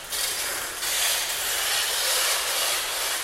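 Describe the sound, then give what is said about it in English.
A dense, harsh din of oilbirds chattering and cackling in a cave about 65 metres down, blended into a steady, loud, hissing wash that barely changes, with slight surges and no pauses throughout. “A kind of chattering, cackling, ghostly sound.”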